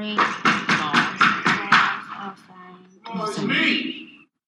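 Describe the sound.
Loud, rapid pounding on a door, about six heavy blows in quick succession. After a short pause, a person's voice follows.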